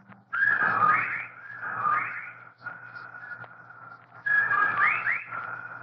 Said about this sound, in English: While outside the window, a legion of whippoorwills cried loudly and rhythmically, endlessly.